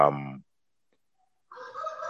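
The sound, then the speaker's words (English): A rooster crows loudly with a harmonic, strained call, then after a second of silence a hen's raspy, drawn-out clucking follows. “oh, the chicken's back.”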